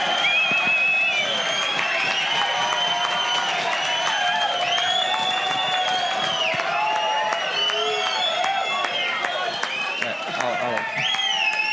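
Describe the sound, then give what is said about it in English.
A large crowd roars with sustained cheering, whistles and shouts over scattered clapping, a dense, steady wall of noise that stays loud for the whole stretch. “It wasn't even in the final, but guys, don't clap it.”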